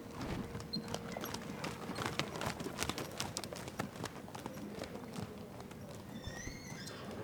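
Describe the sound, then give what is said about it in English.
Horse hooves clip-clop in a steady, slightly uneven rhythm, moderately loud, with a few faint high chirps near the end; the horse is Raindrop at Windswept Farm, a horse farm in Williston. “They teach people to ride and care for horses and to compete in events like dressage.”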